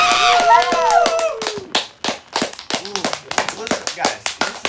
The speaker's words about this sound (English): You hear those fireworks? You hear those fireworks in the background? I do. That's nice. I know, it's a nice touch.